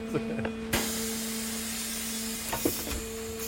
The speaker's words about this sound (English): Let's start the press. Let's go, it's a torture machine. There's huge pressure. If you want to get rid of someone, it's perfect.